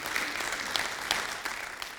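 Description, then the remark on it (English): A crowd claps steadily in a round of applause for God, a dense wash of many hands with occasional sharper individual claps standing out, sustained at an even, moderately loud level with no voices. “Come on, let's give him a good round of applause today.”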